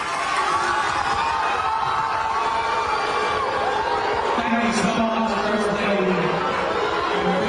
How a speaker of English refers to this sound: And they're saying she got the worst booing she's ever received at a public event where she's not with her husband.